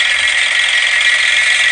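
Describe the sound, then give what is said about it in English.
A vibrating hand-held massager, used on problem areas of the body, buzzes steadily and loudly, a harsh, constant high-pitched drone with no break or change in rhythm throughout. “It's a rather vigorous vibrating action, to be honest.”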